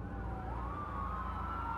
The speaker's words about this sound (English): Ambulances arrive, and the casualties are blue-lighted to Westminster Hospital.